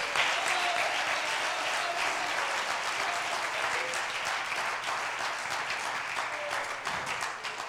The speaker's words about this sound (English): Oh, come on, clap your hands and praise God.